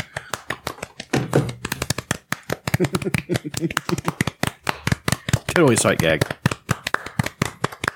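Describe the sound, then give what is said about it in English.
Steady, soft hand clapping, a polite golf clap: brisk, evenly spaced claps run through the whole stretch while people talk and laugh over them. “Love the golf clap.”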